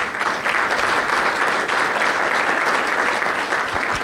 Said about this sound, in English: So why don't we give them a quick round of applause?